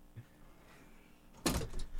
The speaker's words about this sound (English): Okay, here, let me close the door. Let's try this again.